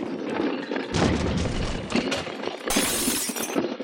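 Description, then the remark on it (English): Loud, continuous smashing and crashing as Tweed's goons break apart Hawkins' sculptures with sledgehammers in his New York studio, with heavy impacts and a fresh surge of shattering debris about a second in and again near the end. No one speaks. “That is to say, a few weeks later, several goons of Tweed's broke into Hawkins' studio and smashed his sculptures with sledgehammers.”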